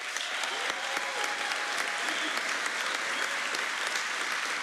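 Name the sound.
audience applause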